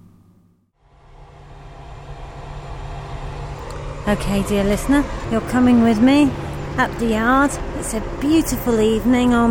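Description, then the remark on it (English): A combine harvester parked in a farm yard drones steadily as it is cleaned of the last of the grass seed, 31 August 2010, a low, constant mechanical rumble that starts after a brief quiet moment, and a man begins talking over it partway through. “Last I heard, he's just finishing the grass seed, and the combine's parked in the yard, and that enormous noise you can hear is him cleaning off the last of the grass seed, ready”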